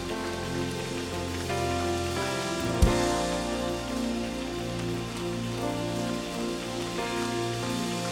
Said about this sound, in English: One more time, let's give God a hand clap of praise. Let's try that again. One more time, let's give God a hand clap of praise.